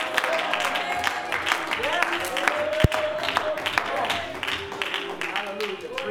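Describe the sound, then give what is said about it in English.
An audience claps steadily for several seconds, a dense crackle of many hands, with scattered voices calling out over it and one sharp, louder clap partway through. “Well, you know, I hope everybody that clapped their hands is going to help me.”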